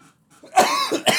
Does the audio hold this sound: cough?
yes